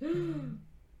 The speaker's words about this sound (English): Your gasp set off a text on your phone.